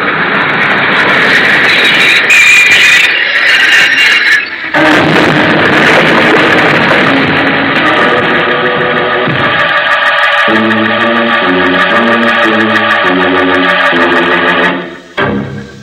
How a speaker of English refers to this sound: See? The train's come in.